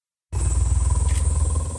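A low, rumbling purr starts abruptly after a brief silence and continues steadily, pulsing in a fast, even rhythm with a loud, throaty, breathy texture and no talking.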